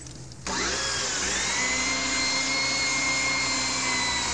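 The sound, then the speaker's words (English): A lubricated power drill, boring with about a foot still to go, whirs up to speed after a brief pause, its motor pitch rising and then holding as a steady, loud grinding whine through to the end. “I'll just pray this drill doesn't break.”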